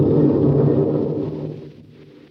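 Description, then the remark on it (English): A dense, roaring wash of a bad tropical storm with a cloudburst of heavy rain, almost like a hurricane, with a heavy low rumble, steady and loud at first, then easing and thinning out toward the end. “It's a regular cloudburst. Yes, it's a bad tropical storm, Chuck.”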